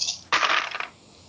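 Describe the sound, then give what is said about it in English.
A short clatter of four dice tumbling across a hard surface, a burst of rattling clicks lasting about half a second before settling into quiet. No one speaks. “I rolled 4 dice.”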